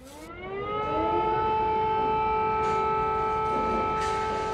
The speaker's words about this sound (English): As the day went on, air raid sirens reminded everyone of the unfinished nature of this war.